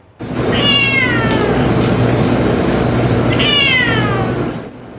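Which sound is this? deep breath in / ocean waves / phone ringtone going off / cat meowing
cat meowing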